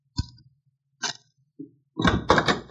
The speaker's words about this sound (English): So I went back to the hotel, leaving Cherokee to wait for me down the corridor a few feet. Once again, I knocked on the lovely Marie's door.